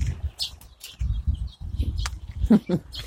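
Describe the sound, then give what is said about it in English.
Finches chirp near their nests as they are scared out of them, in quick, scattered bursts of short high notes, with a brief flutter of wings and a low murmur running underneath. “Scaring the finches out of their nests.”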